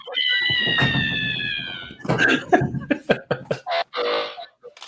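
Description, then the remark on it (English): A drawn-out, high-pitched tonal cry gives way to a quick, irregular series of sharp knocks on a house, about a dozen loud raps clustered together before stopping. “Who's knocking on the goddamn house?”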